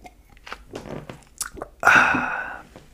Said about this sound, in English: Hold on, let me take a sip of water real quick. Time out.